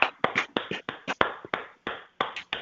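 Scattered applause: a dozen or so sharp, crisp hand claps in an uneven rhythm, fairly loud, with no voices over them.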